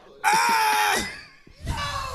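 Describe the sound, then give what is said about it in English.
A voice lets out a loud, shrill scream, pauses briefly, then screams again, comically imitating a toilet begging for its life as someone uses it. Intense, with no other sounds. “I just hear screaming as I'm trying to shit.”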